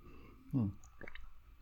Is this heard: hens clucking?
no